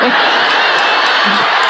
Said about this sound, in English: No, I'm a hack. That's bad. Don't cheer for that.